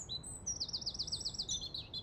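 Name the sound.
birdsong chirping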